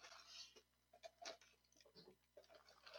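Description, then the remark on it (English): Crisp crunching of someone chewing a crunchy toasted cheese snack, with irregular crackly bites over about three seconds and no talking. “That's a crunchy grilled cheese. Minus the bread.”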